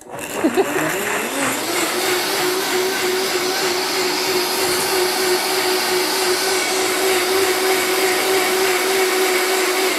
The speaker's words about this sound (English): A little bit extra only makes your potatoes extra creamy, am I right? And then let's blend this up.